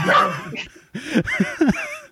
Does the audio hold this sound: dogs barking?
yes